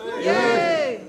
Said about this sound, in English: And of the initial group, give me a cheer if you'd like Scotland to leave.